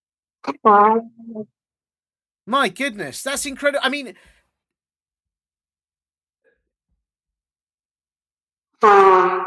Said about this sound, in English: Now, if there are curious minds listening to this, there may be one or two of them curious to know what's the best sound you can make when you blow your nose. Oh. It's this.